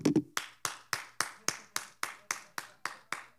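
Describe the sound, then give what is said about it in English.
Passengers on a plane clap: a steady run of about a dozen sharp hand claps at an even, brisk rhythm, fairly loud, with a brief vocal sound at the very start. “The plane erupted in clapping.”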